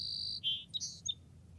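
A marsh wren sings a quick run of high, buzzy chirps and trills in a wetland, clear over a low background rumble, with no voices.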